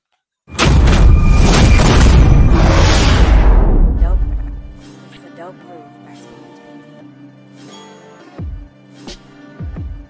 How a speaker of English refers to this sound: Fire the cannons!